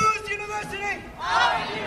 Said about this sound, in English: A big crowd of people, many of them holding picket signs, chanted and marched in circles all around Bunch Hall, one of about five places they were demonstrating on the UCLA campus.